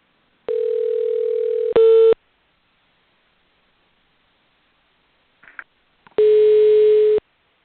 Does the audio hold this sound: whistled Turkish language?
no